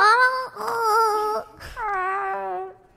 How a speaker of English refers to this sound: Also, the sound it makes, I'm pretty sure is a cat's noise. In fact, the ghast's wail was recorded from a real-life cat. It's crying.